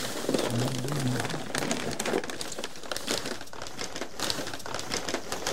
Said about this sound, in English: He takes out different sized bundles wrapped in brown packing paper from the box. He places them on a table and unrolls them.